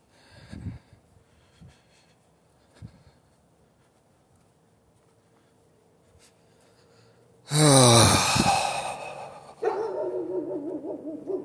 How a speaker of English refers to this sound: As you can hear, another dog. That takes us to 5 dogs. No, wait, that's 15. 16 dogs.